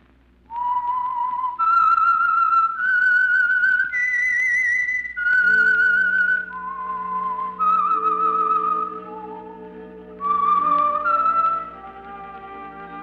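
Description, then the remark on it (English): A solo whistled theme melody of a radio program carries a slow, eerie tune of sustained, clear notes, joined partway through by soft orchestral accompaniment underneath; no one speaks. “Whistle is your signal for the Signal Oil program, The Whistler.”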